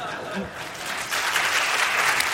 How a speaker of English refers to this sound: Okay, I yield my time to applause